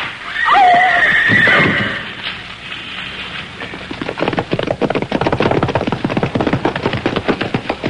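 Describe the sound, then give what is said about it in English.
A horse gives a loud, shrill whinny, then after a brief lull its hooves pound in a fast, steady galloping rhythm that keeps going. “I tried to urge my horse on, and he did his best, but they were gaining rapidly.”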